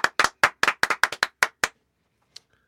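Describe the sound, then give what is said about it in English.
Around ten sharp hand claps from studio hosts clapping with their bare hands to welcome guest Dane Fife, in a slightly uneven burst, loud and crisp, then they stop, leaving near silence with a faint small click and a thin high tone. “Do you guys have those clap gizmos that you can kind of shake back and forth, and it sounds like a clapper? No.”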